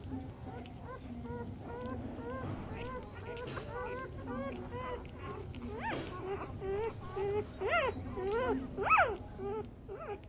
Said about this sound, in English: Now, puppies. These little black ones are all quite weak. So we're just giving them some milk.